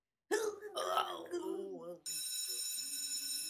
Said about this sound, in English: And that's our bell.